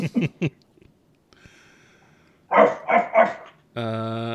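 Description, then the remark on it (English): A dog barks in quick bursts in the film The 13th Warrior, a few sharp yaps followed by three louder, fuller barks, then a steady, droning tone takes over at the end. “Only an Arab would bring a dog to war.”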